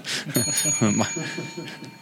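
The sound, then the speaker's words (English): A bright, high bell rings and its metallic tone hangs steadily for about two seconds, with someone talking over it. “Yeah, where's your bell?”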